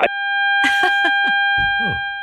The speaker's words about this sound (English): We're getting a beep. Getting a beep from Greg.